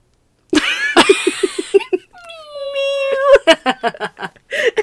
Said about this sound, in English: So tiny. I don't know if y'all heard that, but Seamus's meow is so cute. It's so small. He's like around the corner from us too. You can still hear it on the he microphone. He wants us to go out there and pet him.